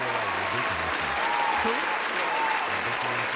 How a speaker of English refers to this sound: Give yourselves a round of applause for sticking it out with that one.